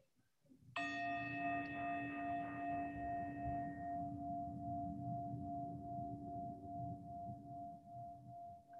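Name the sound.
meditation chime ringing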